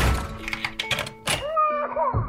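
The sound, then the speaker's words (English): A door is shut with a solid thunk, followed by several sharp clicks and knocks as it is locked, while a sustained tonal hum plays underneath and rises into a wavering tone at the end. “I just put it on, lock the door, and now I don't have to worry about getting them to sleep.”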